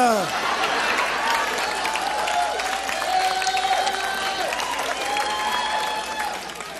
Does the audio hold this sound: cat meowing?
no